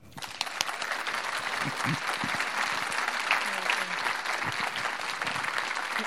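Steady applause from an audience welcoming the next speaker, a dense wash of many hands clapping at an even level for several seconds, with faint murmurs of voices mixed underneath.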